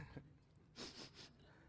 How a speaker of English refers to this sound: Otherwise, I'm going to be sniffing and pulling it back in the whole time I teach.